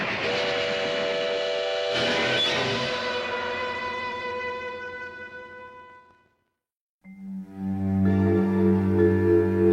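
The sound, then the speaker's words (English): A loud, sustained train whistle blares for several seconds and fades out, then after a brief silence a second long, deep whistle blast sounds. No one speaks. “Train. I don't want to get back on that train.”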